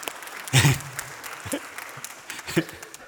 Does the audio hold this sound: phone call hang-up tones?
no